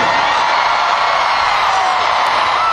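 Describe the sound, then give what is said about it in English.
A large concert crowd cheers and whoops loudly and continuously, a dense roar of voices and scattered yells that holds steady throughout without a break. “And so far, one of the best crowds.”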